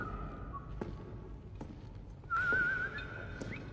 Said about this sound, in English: So it is the same guy. He's whistling.